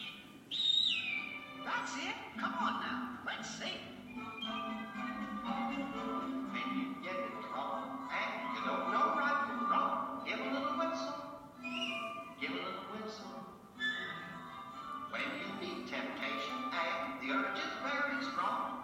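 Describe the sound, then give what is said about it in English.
A jaunty, old-fashioned song from Walt Disney's 1940 animated film Pinocchio, sung by Jiminy Cricket to teach Pinocchio, plays at a steady, moderately loud level, with a voice singing over bright orchestral backing and whistle-like melodic notes throughout. “And Jiminy Cricket taught him a few things through this song. Let's listen to it.”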